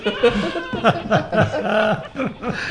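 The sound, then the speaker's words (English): Goats scream in a rapid series of loud, wavering, almost human-sounding bleats, overlapping one another with no pauses between the cries. “No, I listened to goats screaming for 10 minutes today.”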